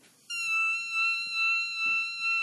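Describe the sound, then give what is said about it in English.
A piercing, very high sung note in the whistle register starts abruptly and holds steady for about two seconds, with a slight waver in loudness and no talking over it. “This is I can do a whistle tone”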